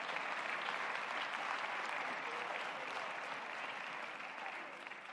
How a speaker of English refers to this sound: Church, amen again. Let's give our choir another hand clap.